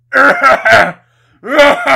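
A loud cough from the other side of a room in two bursts, three rough hacks, a brief pause, then two more, with a throaty, voiced edge like someone clearing their throat.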